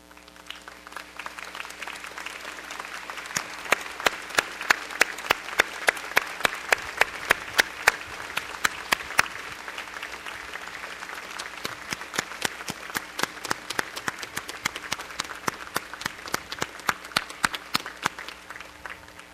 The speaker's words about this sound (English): With that applause, we thank your family and friends for the many contributions that they have made to the achievements that we honor today.